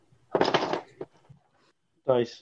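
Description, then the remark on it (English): A quick burst of hard little polyhedral dice, a d12 and d8s, clattering and tumbling across a tabletop, fairly loud, followed by a couple of faint taps and then a short vocal sound. “Here's my d12. And my d8s. There we go.”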